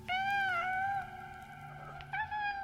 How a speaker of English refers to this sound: And she heard what she thought was a kitten in the basement meowing.